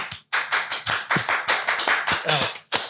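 Steady hand clapping, a dozen or so sharp, close claps at a brisk, fairly even pace, like a small group applauding for a few seconds, ending with a last clap after a short pause.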